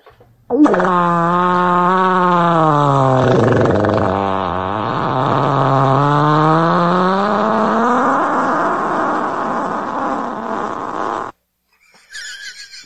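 A long, loud fart plays from a recording, holding a steady buzzing tone for about ten seconds while its pitch dips and climbs before cutting off abruptly.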